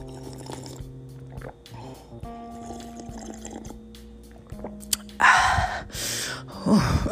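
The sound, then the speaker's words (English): Soft slurping as someone sips water over a quiet, steady hum, followed by two breathy, loud exhales, the second a satisfied gasp after the drink. “Let me sip on some of this water.”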